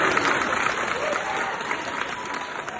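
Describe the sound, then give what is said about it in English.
Sustained audience applause, a dense, steady patter of many hands clapping at an even loudness throughout, with no voices rising above it. “I think we'll have to go round of applause.”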